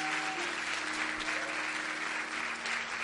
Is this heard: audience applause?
yes